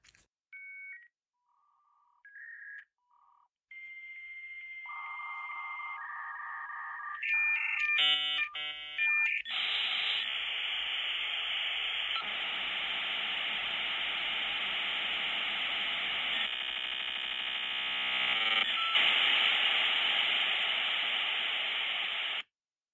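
A dial-up modem connects over a phone line as a desktop computer logs on to America Online: a quick run of touch-tone dialing beeps, then shrill handshake tones, screeches and a long hiss of static with rhythmic buzzing, loud, no voices.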